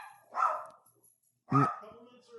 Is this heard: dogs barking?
yes